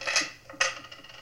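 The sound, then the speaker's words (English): Two bright metallic jingles, a jangling clatter of keys taken out of a pocket and set down on a hard surface, then a few softer settling clinks as they come to rest. “Keys.”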